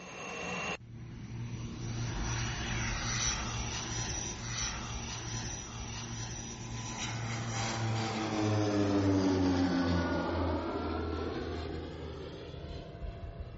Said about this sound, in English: The plane flies low and slow over the terrain to collect data. Recently, an aeromagnetic survey was flown over North America's west coast.